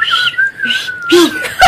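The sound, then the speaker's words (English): A person tries to whistle, producing a thin, wavering tone mixed with loud airy breath, ending in a few breathy puffs. “I don't know if I'm ever gonna be able to whistle. I can't get any more out.”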